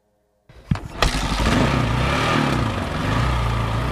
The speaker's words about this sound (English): The bike is fighting up the steep logging road in the Sinfarosa Canyon of the Sierra Madre. It's raining and the trail is rutted and swampy.